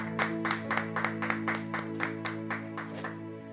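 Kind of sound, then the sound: crowd, audience clapping and shouting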